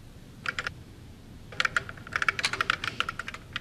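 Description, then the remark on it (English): Quick bursts of typing on a computer keyboard to converse with the Eliza computer program, crisp clicking keystrokes in irregular clusters with short pauses between, fairly clear over a low background hum, no voices. “Eliza is a computer program that anyone can converse with via the keyboard, and it'll reply on the screen.”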